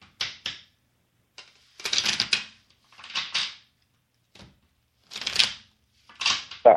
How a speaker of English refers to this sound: Okay, just think about your love life and think about your love life and tell me when to stop shuffling. Okay, I'm gonna start shuffling. You just tell me when to stop.